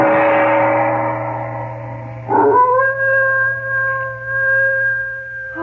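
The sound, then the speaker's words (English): A dog howls in long, sustained, wavering tones in a dark, silent village, in Chandu the Magician, one drawn-out howl sliding into a second steady, rising cry, loud with a low hum underneath and no talking. “No sound can be heard but the ominous howling of a dog.”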